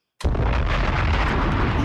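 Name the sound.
bomb explosion sound effect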